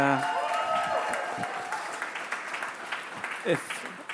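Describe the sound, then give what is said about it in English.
A church audience at Lower Manhattan Community Church cheers and claps steadily, a dense wash of applause with scattered whoops that gradually tapers, as the new lead pastor introduces himself. “If you cheer every time I say that, I'm just going to keep saying it.”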